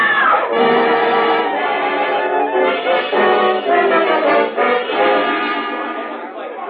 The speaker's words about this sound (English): What happened? Somebody screamed.